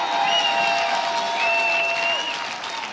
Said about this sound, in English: If that sounds like you, go ahead and clap your hands. Give the Lord a mighty shout in Las Vegas at the Plaza Hotel and Casino.